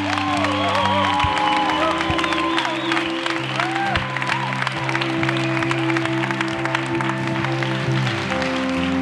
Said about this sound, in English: Come on, give the Lord a clap and a shout tonight.